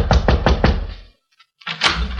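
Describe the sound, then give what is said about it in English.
Four quick, evenly spaced knocks rap on the door of apartment 2A on the second floor, reached by a flight of carpeted stairs, loud and solid, followed by a short silence and then a duller rustling sound. “We went up a flight of carpeted stairs and knocked on the door of 2A.”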